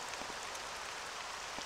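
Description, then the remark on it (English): Steady rain in a video game town hisses across a wide band, a dense, continuous patter of drops on surfaces with a few slightly louder splashes, moderately quiet and unbroken, with no voices. “It started to rain on the way home. I hope you don't hate rain ambience.”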